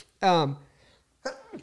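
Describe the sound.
A single loud sneeze with a voiced, harmonic burst, then a short pause and a brief second vocal sound, like a sniff or exhale.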